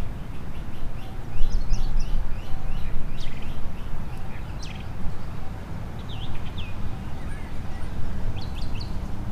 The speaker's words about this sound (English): There's lots of birds. Do you like listening to the birds every day? Just think, you know, you hear the sounds of the birds and when the wind blows through the oak trees and the moss.